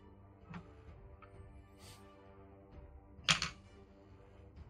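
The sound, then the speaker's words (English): Dice rolled for damage in a tabletop role-playing game rattle and clack onto a hard surface, a few light taps followed by one louder, sharper clatter, over a low steady background hum, with no one speaking. “Roll your damage dice.”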